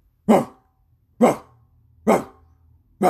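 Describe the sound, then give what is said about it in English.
Dogs barking in a steady rhythm, heard from Shoreline out to Roxhill: four sharp, full-bodied barks about a second apart, loud, with quiet gaps between them and no talking. “Tyrone, you hear that? The barking is coming from Shoreline out to Roxhill.”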